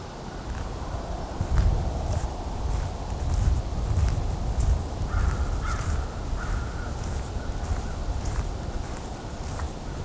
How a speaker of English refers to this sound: As you can hear, there's also a lot of crows here. At least one raven also calling.